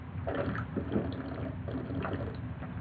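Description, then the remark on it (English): Someone drinks water, with a series of wet sloshing gulps and soft liquid movements repeating every half second or so, with no talking. “Water time. It was hydrate.”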